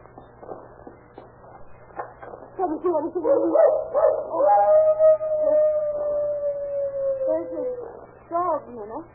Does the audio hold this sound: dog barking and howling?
yes